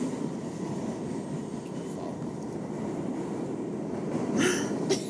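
A subway train rumbles along steadily, with a loud, constant low roar filling the space and a couple of brief metallic hisses or squeals near the end.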